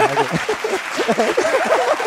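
A steady applause sound effect, inserted in editing as applause for a guest who competed in MasterChef Indonesia season 6. A dense wash of clapping holds at an even level for about two seconds, with cheering voices rising and falling through it.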